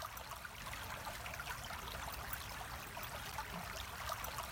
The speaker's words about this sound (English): You start to notice the sound of water in the distance.